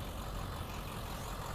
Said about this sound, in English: And then, oh, look at that nice car. That's a nice car. One of them antique vehicles.